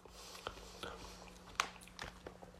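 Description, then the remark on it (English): Chewing a berry, with a handful of irregular, moist crunching bites spread over a few seconds, fairly quiet, with no talking. “Okay, I'm chewing it up.”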